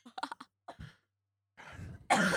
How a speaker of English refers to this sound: Oh my God. Yeah. I just need to breathe. Oh. I know I just wheezed and it made me cough from laughing.